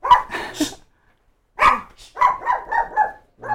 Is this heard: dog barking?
yes